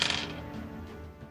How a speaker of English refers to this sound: So I should roll my damage dice with it. Gotta get those out for each of the attacks.